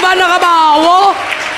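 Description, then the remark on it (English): A church audience claps for the Lamb of God, a steady, dense wash of applause, with a loud voice shouting a long, rising and falling note over the top before the clapping carries on alone. “Come on, clap for the Lamb of God.”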